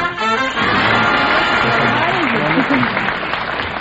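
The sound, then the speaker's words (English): A quiz show audience breaks into steady, dense applause after a contestant's correct answer. The applause holds for several seconds, loud and unbroken, with a voice speaking over the clapping partway through. “Some rat out there started the applause.”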